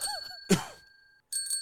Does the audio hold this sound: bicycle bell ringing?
yes